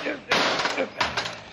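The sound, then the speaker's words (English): Two sharp, loud metallic smashes about two-thirds of a second apart, each ringing briefly before fading, as an old rusty padlock is struck hard. “Now, wait till I smash this old rusty padlock.”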